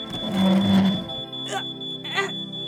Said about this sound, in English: Is something burning? Something burned. Where's the dumb alarm? Ugh, on the ceiling?